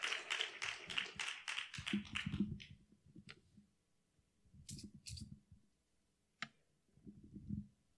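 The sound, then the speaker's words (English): A church audience applauds a pastor as he makes his way up during a morning service, in a brief, dense burst of clapping that dies away after a couple of seconds, leaving a few scattered claps and taps over a low murmur. “Let's go ahead and give him a good applause this morning.”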